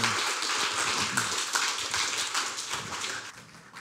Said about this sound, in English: I think we should give him a round of applause for coming.